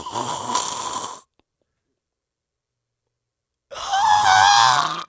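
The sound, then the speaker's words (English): A single voice imitates an audience of people screaming and clapping at the same time: two loud, harsh, raspy throat bursts separated by about two and a half seconds of silence. “Like making the noise of an audience of people screaming and clapping at the same time.”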